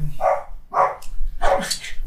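A dog barks three times, two short sharp barks followed by a longer, louder one after a brief pause, with no one talking.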